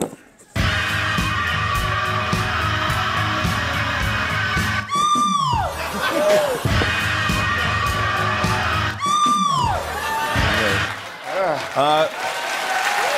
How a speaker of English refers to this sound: It's a decent scream.